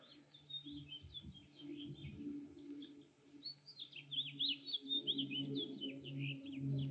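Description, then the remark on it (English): Birds chirp and tweet steadily outdoors, a busy chorus of quick high calls that grows livelier toward the end, over a low rumbling hum in the background. “you listen to birds, airplanes, you look around, you see people, you see flowers and grass.”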